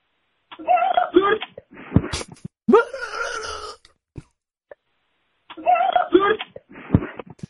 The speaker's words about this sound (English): Do y'all want to hit a voicemail? And Yeah. Do an intermission. I want to hear the scream. Oh, we got screamers. We got a couple in here.